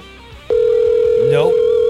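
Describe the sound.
A telephone line sounds during an attempted phone call: after a brief moment, a loud, steady electronic tone cuts in and holds, while people talk quietly underneath.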